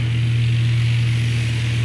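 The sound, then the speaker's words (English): A steady, loud droning hum of a small Cessna propeller plane's engine, heard from the co-pilot seat inside the cabin while circling over the Bolivian Amazon in bad weather looking for a place to land, constant and unbroken with a deep low rumble and a hissy airflow wash on top. “I'm in the co-pilot seat of the small Cessna plane, and we're circling the Bolivian Amazon.”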